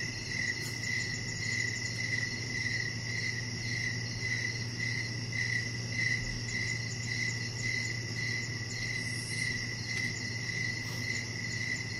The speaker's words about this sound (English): Crickets. Crickets.